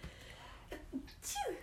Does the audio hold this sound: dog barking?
no